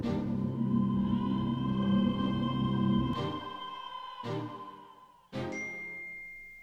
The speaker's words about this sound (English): A ding. Ghost bells? I'll play that one. That's funny. That was my computer, and I don't know how to make it not do that.